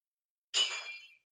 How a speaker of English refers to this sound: That sounded bad. Oh, you heard the crash? I was like, that sounded like glass crashing. It was a heavy toy.